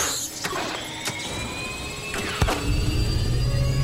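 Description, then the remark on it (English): A Kringle 3000, a 500 reindeer power jet turbine engine for Santa's sleigh, spools up. Its high whine climbs steadily in pitch over a mechanical whir, punctuated by a few sharp clicks, with a low rumble swelling near the end. “It's a Kringle 3000, a 500 reindeer power jet turbine engine.”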